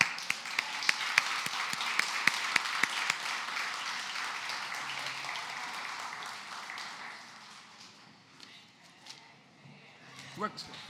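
A church audience applauds with dense, steady hand clapping that gradually thins and fades over several seconds, leaving scattered claps and a few sharp taps near the end.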